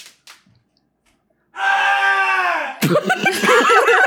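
A man in the distance lets out a long, sustained scream that sags in pitch, then breaks into loud, wavering, laugh-like yelps, after a couple of soft knocks in near-silence.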